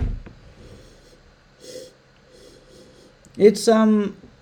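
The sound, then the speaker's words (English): A single sharp, fairly loud cough, caused by the fumes of a bottled carbonated drink, bursts out near the end, trailing into a brief voiced splutter after a few seconds of quiet, faint breathing. “It's actually making me cough.”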